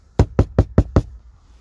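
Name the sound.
knocking on a door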